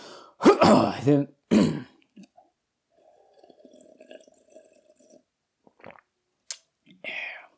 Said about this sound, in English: I'm sorry, I just need a moment here. Just have a sip of my water.